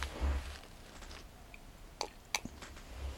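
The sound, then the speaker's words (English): Someone quietly sips tea, with soft slurping and a few sharp lip and mouth clicks spread over a few seconds, against a low rumbling background and no talking. “sipping your tea there.”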